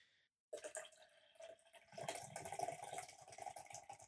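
A big pour of a drink into a glass, poured out for the New Jersey Devils' 2022-2023 season: a steady gurgling stream that starts abruptly, grows fuller and splashier partway through, and keeps running for several seconds with no talking.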